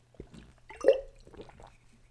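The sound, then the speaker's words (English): A quiet sip of water with a small wet squish and a swallow, followed by faint mouth and throat sounds; no talking. “Water time.”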